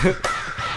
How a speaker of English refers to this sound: Well, the best part, too, is in the video, it just has, like, Ravens, like, crowing. But it switches from left to right to make it look cool.